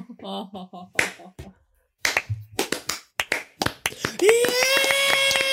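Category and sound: crowd, slow clap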